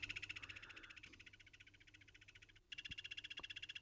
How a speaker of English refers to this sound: So, okay, I'm trying to guess the frog call. It sounds like it's very rapid fire, so like a subdued machine gun effect frog.